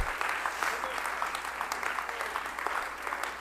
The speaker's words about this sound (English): Clap your hands unto the Lord today. Yes, it does.